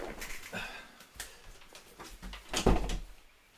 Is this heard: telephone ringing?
no